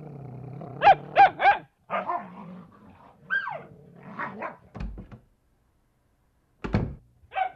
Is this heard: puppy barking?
yes